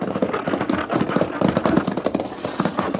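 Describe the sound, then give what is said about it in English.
Horse hooves clip-clop in a quick, steady rhythm, fairly loud, with a rumbling undertone of a stagecoach rolling along a stagecoach road at an isolated, lonely spot. No one speaks. “Selecting an isolated, lonely spot along the stagecoach road, the Arbuckle Kid suddenly appears, shotgun in hand”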